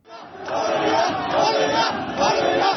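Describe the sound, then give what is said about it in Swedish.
A large protest crowd in Egypt chants slogans in unison, "Horeja" (freedom) and enough of 30 years of Hosni Mubarak, against unemployment, poverty, corruption and police torture, a loud, continuous roar of many voices rising and swelling in rhythmic waves across the whole stretch. “Horeja, frihet, det får vara nog med 30 år av Hosni Mubarak, ropar de.”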